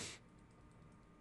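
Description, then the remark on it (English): Soft, quick keyboard typing, a string of faint clicks tapping away after a brief burst of noise, with no one speaking. “You should put typing instead because that's what you are doing.”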